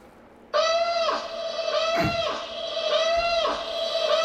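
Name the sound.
alarm going off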